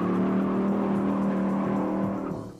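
A car engine revs loudly with a steady, rising growl, then starts to fade at the end as the car speeds off into the distance.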